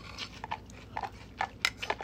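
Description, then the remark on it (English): Crunching of cereal being chewed, a rapid series of short, crisp bites repeating unevenly over a couple of seconds, fairly quiet with no talking. “That crunch you get from the cereal and that sweet taste.”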